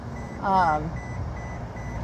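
A single short electronic chime, a car seatbelt warning triggered by a heavy work bag on the seat next to the driver, sounds briefly over a low, steady rumble of car cabin noise, then fades, leaving only the background hum.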